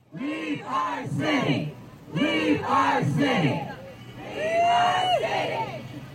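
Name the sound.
protest crowd chanting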